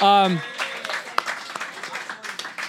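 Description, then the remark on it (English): An audience at a live event breaks into applause for themselves right after a brief spoken word, a dense, steady patter of many hands clapping that continues to the end. “Give yourselves a round of applause for coming out.”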